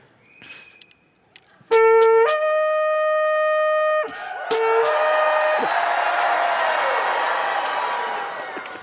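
A loud shofar blast sounds two steady horn notes rich in overtones, the second shifting pitch. Then a large audience, the 11 o'clock crowd, shouts on cue as loud as it can, a sustained, roaring shouting and cheering that gradually fades.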